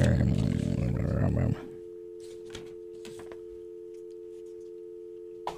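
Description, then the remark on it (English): A loud, rough burst of noise for about a second and a half gives way to a steady telephone dial tone as a call is redialed on a new phone system, humming on, broken only by a couple of faint clicks. “I have to dial 9 and a 1.”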